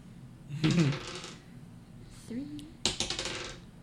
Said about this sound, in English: What dice were you rolling, sir? D8s. Okay. Yeah, I'm just making sure she was rolling the right dice.